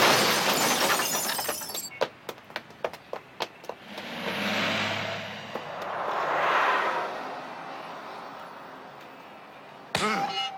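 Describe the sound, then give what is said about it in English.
A loud crash of shattering glass opens, then a quick string of sharp cracks and thuds as a door is kicked down and wood hits the ground, followed by low rumbling swells and a final bang. “Because you hear the kick, you hear the wood hitting the ground, and you hear the glass shattering.”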